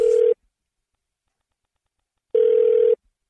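A phone line rings on an outgoing call to a man waiting for his genetic test results: a short burst of steady electronic ringback tone, a long silent gap, then a second half-second burst, clear with no talking.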